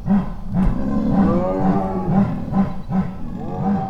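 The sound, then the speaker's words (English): A chorus of big cats chuffing and moaning at night, recorded with microphones set up outside, with overlapping low, rumbling calls pulsing in a steady rhythm of rapid bursts, some rising and falling in pitch. Loud throughout, with no talking. “It's a kind of a chuffing chorus that they do, and they won't do it around people.”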